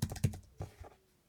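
Several crisp keystrokes on a computer keyboard, clicking in an uneven rhythm for about a second before trailing off into quiet. No one speaks.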